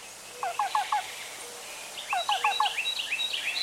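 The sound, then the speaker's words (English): Two quick bursts of a black-billed cuckoo's soft, rhythmic cu-cu-cu call, each three or four repeated notes, with higher chirps from other birds scattered over a hushed woodland background. “The black-billed cuckoo is a more northerly species, living in dense woodland, even conifer forests.”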